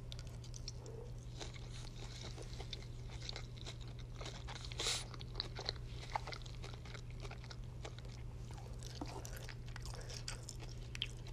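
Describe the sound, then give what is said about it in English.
Steady chewing of cold home-cooked food with moist, crunchy bites and clicks repeating over several seconds, alongside soft breathing through the nose and a low constant hum in the background; no one speaks. “I wonder if you can hear me breathing through my nose when I chew.”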